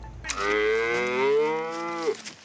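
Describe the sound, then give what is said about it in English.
A single long, loud cow moo, holding a steady low tone for about two seconds before trailing off, with no other sounds around it. “a state senator is arrested. It involves cows.”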